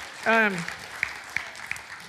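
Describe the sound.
A short voiced whoop rises over a church audience clapping for one of the church's elders; scattered claps ring out at irregular intervals above a steady low wash of group noise.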